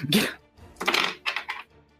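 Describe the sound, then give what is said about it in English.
Several dice, including a four-sided die, are dropped onto a hard tabletop in three quick bursts of bright clattering, fairly loud, with short gaps between the rattles. “Isn't that the beautiful sound? Dice hitting the table.”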